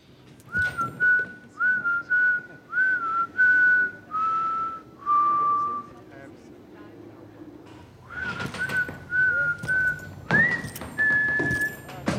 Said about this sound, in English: Was …'s whistling ADR or location? The whistling was location.